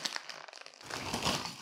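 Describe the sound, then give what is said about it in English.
Crinkly rustling of a chip packet, starting with sharp, scattered crackles and then growing into a louder, denser stretch of crumpling plastic. There are no voices. “Bit of rustling.”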